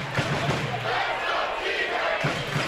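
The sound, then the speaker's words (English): A large stadium crowd roars steadily at a football game as the clock runs down before a punt, a dense wall of cheering and shouting that holds at a constant loud level throughout, with no single voice standing out. “You can hear the crowd. They're into it.”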